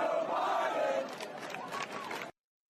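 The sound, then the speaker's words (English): A large crowd chants "Let's go, Brandon" in unison, a rising collective roar of voices that holds steady for a couple of seconds before cutting off abruptly. “As you can hear the chants from the crowd, let's go, Brandon.”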